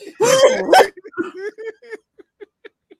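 A loud, rough throaty outburst opens, followed by a string of short, rhythmic throat-clearing and coughing sounds that grow quieter and more spaced out, close to the listener.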